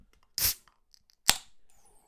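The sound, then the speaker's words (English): A can of Guinness being opened on a Thursday night with the microphone right next to it: a short scraping crackle, then a sharp metallic pop followed by a soft, fading fizz. No one speaks. “Let me just put the microphone next to the old can of Guinness so you can hear it.”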